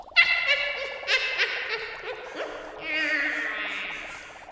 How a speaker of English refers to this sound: The ominous caw of a crow is as synonymous with Halloween as the bubbling of a distant cauldron or the wicked laugh of a warty witch.